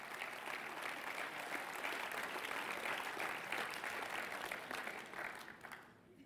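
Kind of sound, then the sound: crowd, audience applause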